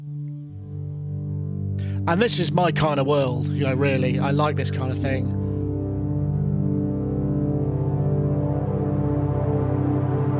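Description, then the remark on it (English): A sustained, simple saw-wave tone from a Minilog XD synthesizer drenched in wet reverb, with a rich stack of steady harmonics holding throughout while a man talks over the first half before the sound rings on alone. “this is again just that really simple simple saw. This is the Minilog XD”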